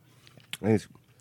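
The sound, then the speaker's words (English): Someone chewing food whose flavor is guessed to be glass clippings or lime, with a few soft, wet mouth clicks and crunches spread across the moment and a brief voiced hum rising in the middle. “Well, what flavor was that you were eating?”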